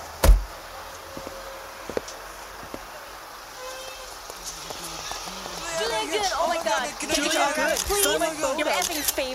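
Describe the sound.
A car door clunks open with one sharp, close thump at the start, followed by a few faint clicks, then a swell of excited overlapping voices builds in the background.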